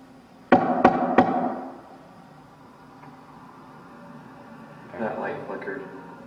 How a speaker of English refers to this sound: So I'm going to knock on the wall and I want you to replicate it. Make it loud, just like this.